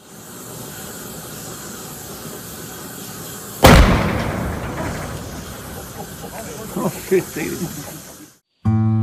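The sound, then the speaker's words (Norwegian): At a fire safety course, a can lying too close bursts with a sudden loud bang after a steady low hiss, followed by a rushing, roaring hiss with scattered crackles and pops before the sound cuts off abruptly; recorded on an iPhone camera. “bli med meg til brandvernkurs og se hva som skjer når en sånn boks ligger for nære.”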